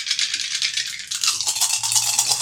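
A die rattles and clatters in a steady, dense stream of bright, dry ticks for a couple of seconds, growing slightly busier toward the end, with no voices.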